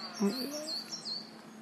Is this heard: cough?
no